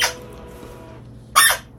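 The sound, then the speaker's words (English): Two squeaks from a squeezed squeaky toy, a brief one at the start and a louder, shrill one near the end, with quiet room hum in between and no talking. “You got the squeaky toy.”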